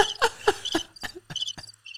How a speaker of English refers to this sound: Oh, the crickets have gone off. Did you not press that? That was from banging.